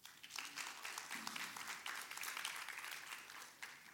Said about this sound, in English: Really soft golf clap, but it seems like a lot more than first service have their Bible.